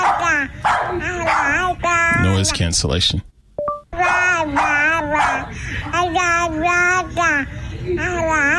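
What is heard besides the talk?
dog barking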